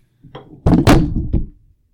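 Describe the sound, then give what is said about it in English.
A microphone falls over: a soft rustle, then a couple of loud, heavy thuds with a brief clattering bump afterward, settling into quiet within about a second. No one speaks. “cast a wet fart on his microphone and it fell over dead.”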